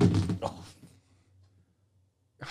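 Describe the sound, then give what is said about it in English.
A cat tumbles off a table with a brief scrabbling clatter and thump, followed by near silence and another short burst of noise at the very end. “In case you didn't hear, Cat just fell off. Table.”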